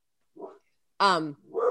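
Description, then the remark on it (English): A dog barks in short bursts: a soft yelp, then one loud, sharp bark, followed by another quieter bark trailing off. “Sorry, the dog is barking.”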